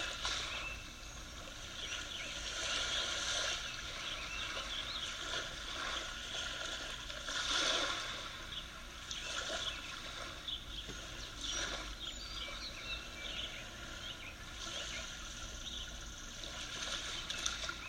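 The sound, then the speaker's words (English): Steady water noise of sea waves lapping, a soft continuous wash that swells gently now and then, especially partway through, with no voices present. “Notice the sounds of the sea one last time.”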